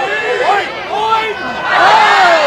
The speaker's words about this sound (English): So he tries to hit the ball, and his swing is so awkward, he cannot make contact with this ball. He swings like 5 to 10 times, making a bigger divot each time, and the crowd reaction is classic.